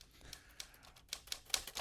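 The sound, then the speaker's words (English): A quick run of typewriter keystrokes, about eight or nine crisp, clacking strikes in an uneven rhythm, fairly quiet, with no voices. “Typewriter means it's time for headlines.”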